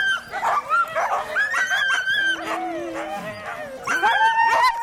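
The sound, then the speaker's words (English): A pack of sled dogs being hooked up to a sled team barks, yips and whines excitedly all at once, a dense, overlapping chorus of high-pitched calls that continues without pause, loud. “All that excitement and noise and chaos hooking up, and you pull the hook and it's just instant silence.”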